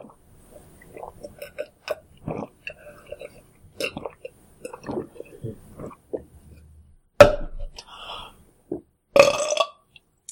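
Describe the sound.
A soft, short burp, after drinking and eating, rises out of quiet chewing and murmured voices, followed by a couple of louder, breathy bursts.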